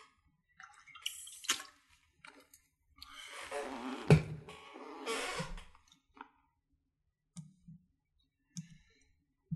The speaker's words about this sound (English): Just going to have a little bit of water here.